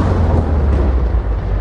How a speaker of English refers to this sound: Cue convenient thunder and lightning.